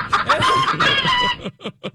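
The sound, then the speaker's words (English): A busy burst of chickens clucking and squawking together at a chicken sanctuary, then three short separate clucks trailing off at the end. “Oh, a chicken sanctuary.”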